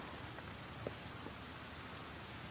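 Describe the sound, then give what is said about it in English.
Steady rain falls continuously outdoors at the cemetery of Ide Chapel, a dense hiss of drops with a few slightly louder patters on a surface, no voices. “It was raining like this, and you could see the moon filtering through the clouds that were passing over through the trees.”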